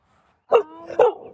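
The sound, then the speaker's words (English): A dog barks twice in quick succession, a short sharp yap followed by a slightly drawn-out, whiny bark, loud with no talking over it. “I love your dogs. Those are super fun.”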